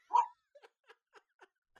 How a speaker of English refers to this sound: All right, we're gonna Leia's barking again, so let's shut this down.